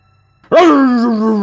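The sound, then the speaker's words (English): After a moment of silence, a dog lets out one loud, drawn-out yelping whine that holds steady and carries on to the end, with no other barks around it, as cold nuggets are tossed to the dogs. “And he tosses a few cold nuggets back to the dogs.”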